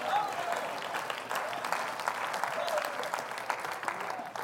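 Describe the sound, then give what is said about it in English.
A small audience applauds, with a steady patter of overlapping claps that holds at a fairly even, moderate level for the whole stretch without building or fading. “And this kind of courage isn't going to be applauded, I know, except for all three of you that applauded.”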